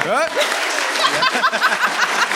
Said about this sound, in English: And there's applause and clapping. This is a binding contract.